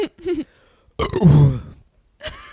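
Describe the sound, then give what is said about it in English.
A loud, drawn-out burp rumbles for about half a second, framed by a couple of shorter throaty vocal bursts before and after. “The whole rest of the show, we're gonna just be burping.”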